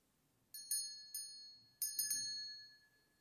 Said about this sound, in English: The first church bell calling people to Christmas worship. And he turned his head, he turned his ear, and then the next church.